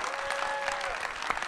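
A burst of audience applause, dense and steady clapping at moderate loudness throughout, with a faint sustained tone running underneath for the first part.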